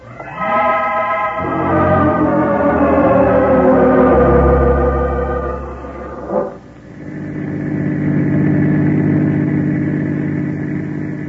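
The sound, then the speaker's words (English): A car engine runs steadily and loudly while driving, its droning tone shifting in pitch, briefly dipping before settling into a lower, even hum. No one speaks. “Keep driving.”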